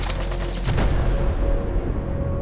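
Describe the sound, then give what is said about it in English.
A rapid burst of gunfire near a burning bank in Mosul, several sharp cracks in quick succession, then a low rumbling echo that lingers and fades, with no voices. “And amid all that, there was gunfire.”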